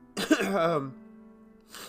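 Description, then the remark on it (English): A harsh, raspy cough with a strained, voiced edge trails off into a low fading hum, then a short breathy burst follows as the coughing continues. “This damn cough has been so persistent.”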